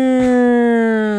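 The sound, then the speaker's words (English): A loud, sustained siren wail with a buzzy, harmonic-rich tone that holds steady and sags slightly in pitch over about a second, with no voices. “Yeah, playing a siren throughout your whole special, though.”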